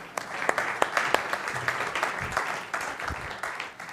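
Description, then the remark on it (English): A church audience breaks into steady applause, clapping a pastor off the stage, a dense wash of many hands clapping with sharp individual claps popping out, holding at a fairly even, lively level throughout. “So you call clapping someone off the stage.”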